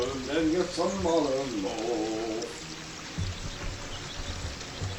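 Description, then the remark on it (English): Steady flowing river water rushes and gurgles throughout, with a voice sounding over it for the first half before the water continues on its own. “I tell you what, I do like being here, but the river, you know, the constant river, it just makes me want to pee.”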